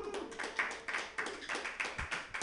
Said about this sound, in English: So you guys like communism is the question. Round of applause for communism.